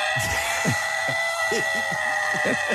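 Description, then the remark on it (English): A voice yells as loud as it can into a plastic cup held over the mouth, coming out as a string of short, muffled, hollow bursts in quick succession, over a steady background hiss and hum. “Is that you yelling as loud as you Do can?”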